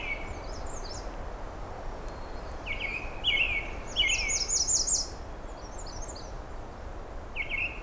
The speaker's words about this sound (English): And a bright and cheery American red start, too.